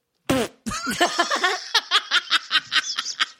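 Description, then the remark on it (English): A voice imitates a fake-sounding fart let out while urinating in a bathroom, with a sudden loud buzzy blast, then a string of quick, rhythmic sputtering puffs, fairly loud with no other sounds. “It was one of those funny toots that sounds fake though, where it's like.”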